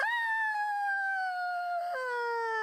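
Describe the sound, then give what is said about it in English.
A person lets out one long, high-pitched scream, loud and sustained for almost three seconds, its pitch sliding slowly downward with a sudden small drop near the end. “Why did I scream like that?”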